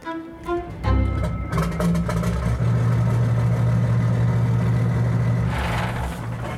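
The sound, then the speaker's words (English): A boat's port engine cranks and catches, then settles into a loud, uneven idle with a low, lumpy throb and a brief roughening surge near the end. “Ugh, the port engine's being a turd again.”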